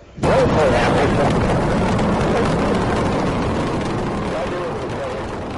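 A rocket launch: a sudden, loud, crackling roar kicks in almost at once and rumbles on steadily across a wide range, easing only slightly toward the end.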